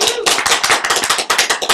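A crowd at Impact City Church claps in a burst of applause, many hands striking fast and unevenly in a dense, bright patter that stays loud throughout without letting up.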